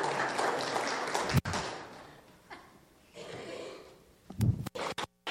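An audience claps on cue when the speaker raises his right hand: a dense, steady burst of clapping that cuts off abruptly and returns as a thinner, scattered patter with a few sharp knocks near the end.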